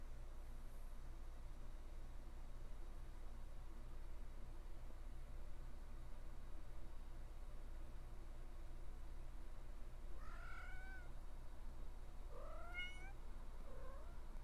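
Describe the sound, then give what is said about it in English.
A cat meows two or three times in quick succession near the end, clear against a steady low background hum, after a long stretch with no other sound. “Yes, kitty cat, we hear you.”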